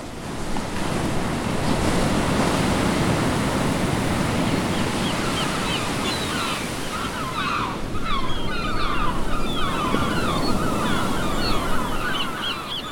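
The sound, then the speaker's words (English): Ocean waves break and wash steadily onto an island shore with tall palm trees, a loud continuous surf roar with wind gusting across the microphone and birds chirping faintly in the background. “With tall palm trees and views of the deep blue ocean on all sides, the island they had selected seemed like a paradise.”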